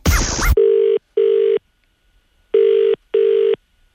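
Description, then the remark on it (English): A brief burst of noise, then the ringback tone of an outgoing phone call to a hairdresser in Dublin to book an appointment: two pairs of steady buzzing double rings separated by a pause, clear with no one speaking. “you may have missed Renee Zellweger ringing some Dublin hairdressers yesterday”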